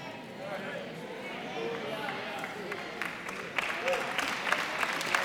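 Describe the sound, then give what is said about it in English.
Sparse, half-hearted audience clapping, a few scattered claps over a steady murmur of crowd noise, growing slightly louder and more frequent toward the end. “I'll take that half-hearted hand clap.”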